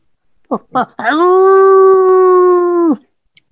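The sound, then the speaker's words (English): Two short yelping calls, then one long, steady howl held for about two seconds, loud. It sounds like a person's voice imitating a dog. “Oh, look at the doggy. Rough. Rough.”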